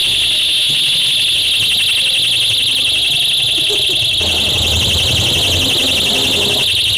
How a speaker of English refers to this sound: Counter activists tie rape alarms to balloons and let them go in a Just Stop Oil meeting.